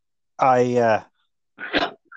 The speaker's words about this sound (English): And while you say that, I'm going to cough. So, I apologize.